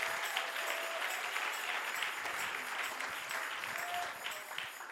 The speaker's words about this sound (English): Clap your hands and give him a praise one more time.